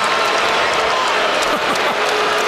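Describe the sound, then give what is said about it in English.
A large arena crowd at a basketball game in San Antonio boos player Kawhi Leonard in a loud, continuous roar, many voices blending into one dense wall of jeering that holds steady throughout. “Stop all the booing and let these guys play.”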